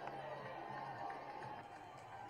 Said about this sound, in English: They said there's another angle of the crowd as he puts on the MAGA hat on. Keep in mind, this is New York City of all places. So let's see how people react. The whole crowd is telling him to put it on. He puts it on, and they're cheering for him.